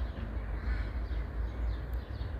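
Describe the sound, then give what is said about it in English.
Crows caw a few times over a steady low outdoor rumble, their harsh calls fairly faint and blending into the background noise. “Birds make such lovely sounds, and it's one of the best nature forms of music.”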